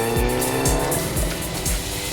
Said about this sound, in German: Der Motor heulte auf und die Maschine preschte davon.